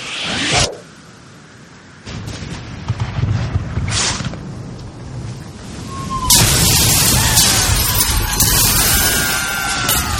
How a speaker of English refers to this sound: Quickly fire a barrage into their port side while they reload. Aye, aye, sir. Fire the cannons!